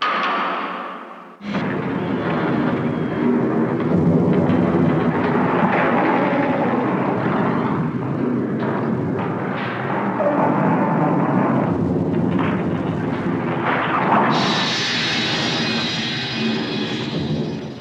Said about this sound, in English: So this next one, this is one of my favorite sounds in the whole movie. It's the tractor beam and coupling. Let's listen to this.